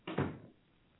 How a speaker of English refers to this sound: will you please close the door?